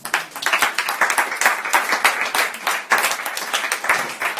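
An audience applauds a woman speaker steadily, with dense overlapping claps at a fairly loud, even level for several seconds, and no voices cutting through.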